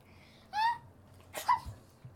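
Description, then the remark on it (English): A young girl fakes a sneeze: a short voiced intake, a brief pause, then a sharp, breathy burst, followed by a soft thump. No talking. “Wait, did you just achoo and then eat it off of your arm? She was pretending.”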